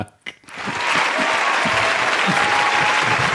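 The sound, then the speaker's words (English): A crowd bursts into applause after a brief pause, the clapping swelling quickly into a loud, dense, steady patter of many hands that keeps going to the end. “Round of applause.”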